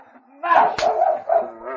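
A sled dog team yelps and whines in strained, wavering cries as a boy whips them, broken by a single sharp whip crack partway through, loud.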